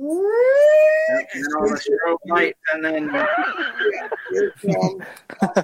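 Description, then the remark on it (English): A voice imitates the siren from a song with a single rising wail lasting about a second, followed by animated talking and some chuckling. “Or somebody, and when they came out with that siren to his song, to his music, all you hear was.”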